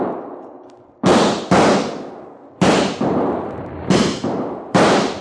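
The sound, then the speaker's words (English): A rapid volley of about seven loud gunshots, fired to run coyotes off, coming in uneven pairs, each sharp crack trailing off in a lingering rumble before the next. No one speaks. “But not too late to run those coyotes out of there with lead.”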